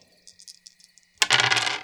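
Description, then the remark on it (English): Dice rattle softly in a cupped hand with light, scattered clicks, then clatter loudly across a hard surface in a dense burst of rattling that tumbles on to the end, as a player rolls them during a game. “She's going to roll.”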